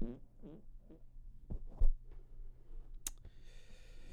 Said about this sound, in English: I'm gonna fart into the mic really quick. Don't do it.